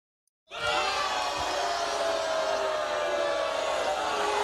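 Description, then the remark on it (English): A crowd booing sound effect: after a brief moment of silence, a dense, loud roar of many voices starts abruptly and holds steady to the end, with no one speaking over it. “There's the booing.”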